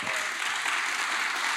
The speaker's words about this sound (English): So let's give Laura and Frank a big round of applause.